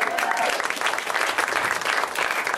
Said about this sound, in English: You guys, this is a huge moment in my life. I am engaged right now. You can clap for that.